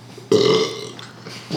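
A loud, deep burp bursts out, holding a throaty rumble for about a third of a second before trailing off, followed by a short breathy sound.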